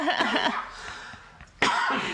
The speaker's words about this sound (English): I'm trying to avoid this cough, and I can't.